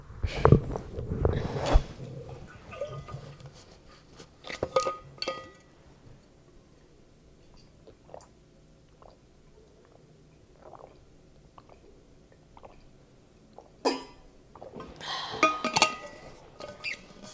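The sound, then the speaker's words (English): Someone drinks cold water from an insulated water bottle: a burst of handling and clinking, then soft, evenly spaced swallowing clicks, and a final clatter and slurp. No one speaks. “My high cast water bottle kept my water so cold.”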